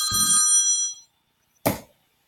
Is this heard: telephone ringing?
yes